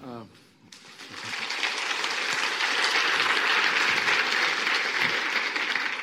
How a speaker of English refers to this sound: Yes, hopefully you give both sides the right amount of applause, because I'm very sensitive to what happens here.